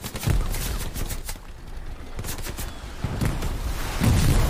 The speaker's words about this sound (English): Bop, that's also their tank gone. Bop, that's more explosions.